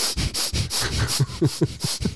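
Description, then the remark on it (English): Quick, forceful breaths through the nose, the rapid-breathing first stage of dynamic meditation, about eight or nine sharp hissing puffs in a steady, fast rhythm, loud and with no talking. “First, the person does 10 minutes of rapid breathing through their nose.”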